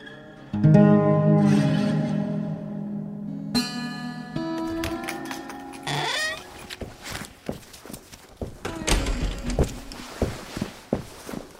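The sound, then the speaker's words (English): A bus idles with a droning hum, then its door swings open with a rising mechanical whine and a thud, followed by a series of quick footsteps clattering aboard as a man hops in. “The bus door opened, and he quickly hopped in.”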